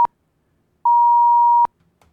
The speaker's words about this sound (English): I don't know why it keeps beeping at us, but anyway.